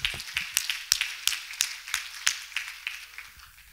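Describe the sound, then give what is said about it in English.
A church audience claps hands to the Lord in a steady, even rhythm, about three sharp, crisp claps per second, with no one speaking over it. “Clap your hands to the Lord and love him today.”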